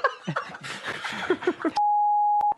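A person talks briefly, then a loud, steady, single-pitched censor beep abruptly cuts in and holds for under a second, covering a word before stopping sharply.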